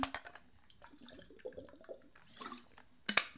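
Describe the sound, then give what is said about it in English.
Rotting water splashes and trickles from a tap in short, uneven bursts, ending in a louder gush of spray, with faint dripping and clatter in between. “I mean, I understand sometimes not having running water, as much of my family were farmers, excuse me.”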